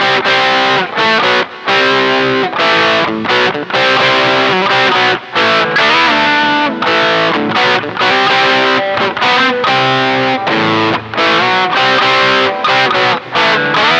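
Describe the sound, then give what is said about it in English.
A loud, heavily distorted electric guitar riff plays alone, chugging in short choppy bursts with brief gaps, a thick harmonically rich tone with a slight modulated shimmer. “but you kind of have to admit that he's amazing at guitar.”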